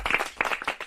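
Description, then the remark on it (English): Hands clap in a quick, uneven flurry for about a second, like a small group giving a short burst of applause, moderately loud. “Give me some claps.”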